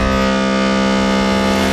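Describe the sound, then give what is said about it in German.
A person belts out a long, loud, steady low-pitched cry that mimics a foghorn, holding one droning note for nearly two seconds without a break. “Bestimmt wurde so das Nebelhorn erfunden, hm?”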